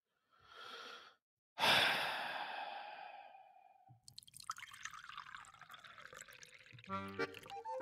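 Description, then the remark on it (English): A brief breathy exhale and a long sigh-like rush, then water pouring steadily into a glass, burbling and trickling for several seconds with no talking. “I need a little water.”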